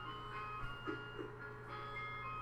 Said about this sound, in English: My parents have a weird Christmas clock, and in the background just played every hour it plays a different Christmas song, and it just so happens it played on the 12th day of Christmas.